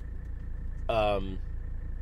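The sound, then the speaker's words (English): A car engine drones steadily from inside the cabin, the car vibrating quite a bit, a constant low rumble throughout, with a brief harmonic, voice-like sound rising over it around the middle. “Because this car vibrates quite a bit.”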